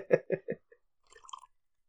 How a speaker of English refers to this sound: Oh, I like the little tea sip there. That's staying in.